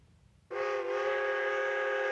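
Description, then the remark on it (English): A train whistle cuts in suddenly after a brief quiet moment, then holds one loud, steady, chord-like blast that doesn't let up through the end. “It is important to realize the train eventually will pull away.”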